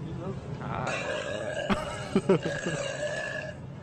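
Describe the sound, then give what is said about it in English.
A long, rumbling burp with a gravelly, voiced tone, fairly loud, broken by a few sharper croaking pulses near the middle before trailing off. “I bet you wish you can buy all the products that I just burped on, huh?”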